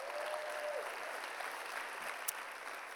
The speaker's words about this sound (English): All the people in the sound, our ushers, all the kids department workers. Can we give them a big security? Can we give them a big old clap? Servants, come on. They're serving God. Yeah, give them a big old clap.